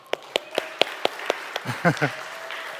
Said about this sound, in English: would you stand up and get your round of applause,